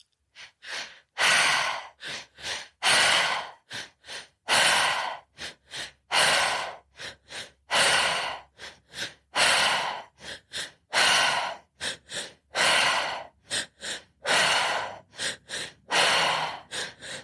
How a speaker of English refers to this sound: That's it. Just keep the breath circulating, breathing in the energy, in the air, powerfully letting it out. That's it. Just keep going.